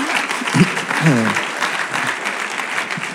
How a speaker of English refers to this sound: In Jesus' name, amen. Amen. You can clap.